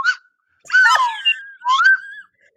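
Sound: slide whistle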